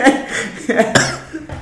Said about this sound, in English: getting that tobacco cough. Yeah, tobacco is bad for you.